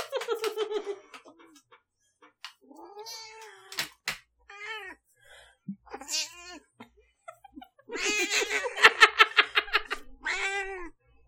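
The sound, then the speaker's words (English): A female cat that has just been woken meows repeatedly, a string of loud, drawn-out, complaining yowls with short pauses between them, ending in a longer burst of insistent caterwauling. “So that's what Sammy has to say.”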